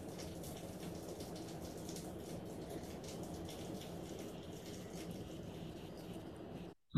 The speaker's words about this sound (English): Oh, I do hear the rain